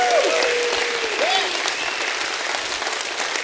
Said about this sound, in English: And today's the first day he's got every reason and we got every reason to lift up a hand clap of praise and a shout of praise.